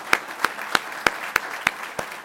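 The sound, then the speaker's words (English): Applause from an audience at a lecture evening, honoring donors to the lecture fund, with a soft wash of clapping beneath about seven sharp, evenly spaced claps that stand out. It is moderately loud, and no one talks over it. “They're going to raise their hands, but we still owe them a round of applause.”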